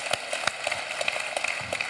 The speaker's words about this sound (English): Give him a round of applause real quick.